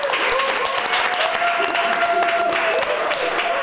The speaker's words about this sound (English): Ladies and gentlemen, please give a big round of applause for our very special guest,